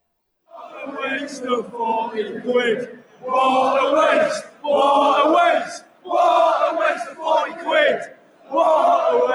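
A large crowd chants in unison, voices swelling in loud, rhythmic bursts separated by brief pauses, a steady repeated cadence of massed shouting with no other sound.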